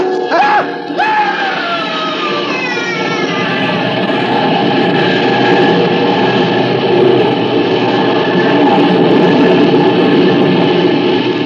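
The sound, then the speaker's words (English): A train thunders past, a loud, steady roar of rumbling and clattering on the tracks that fills the whole stretch, opening with a brief shrill, wavering cry or whistle. “When the train had passed, I saw what was left of his body on the tracks.”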